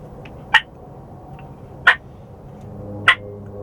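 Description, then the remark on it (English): A relaxed hen gives three short, clipped clucks of ambient noise at an unhurried, even pace, each a quick burst with quiet pauses between, over a faint steady background hum. “And so like put, just like a little, like a hen sounding pretty relaxed, pretty, you know, okay with what's going on. Yep. She'll just make an ambient noise.”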